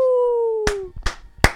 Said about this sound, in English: can you give me two claps and a Grogu?